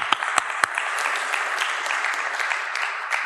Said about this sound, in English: We have some parents who just graduated a bunch of seniors. Give them a warm round of applause, by the way, folks.